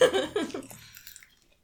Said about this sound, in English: Oh, God, I can't listen to you chewing.